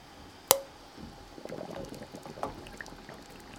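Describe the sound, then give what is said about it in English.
A sharp glassy clink rings out, followed by a stretch of soft splashing and bubbling water as glass jars are lowered into a water-bath canner, fairly quiet, with no talking. “And now, the moment we've all been waiting for, it's time to lower the jars into the canner.”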